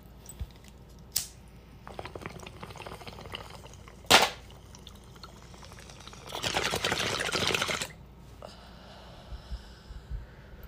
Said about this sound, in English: Okay, guys, get ready to take your fucking rips. Hope you got something good to smoke.